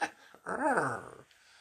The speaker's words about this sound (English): We did see plenty of other stags, and we heard them rutting a lot while we was on a walk. Yeah. Sounds like a villager. That sounded like a really like a curious creaky door.